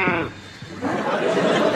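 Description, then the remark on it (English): Pigs grunt and squeal in a short burst in a farmyard as they are being mucked out, followed by a continuous rough snuffling and shuffling noise that fills the rest of the moment. “Right then, let's get these pigs mucked out.”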